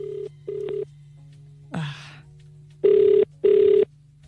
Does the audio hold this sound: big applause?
no